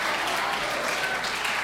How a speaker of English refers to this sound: Let's all stand to our feet and clap our hands and shout, thank God for the church.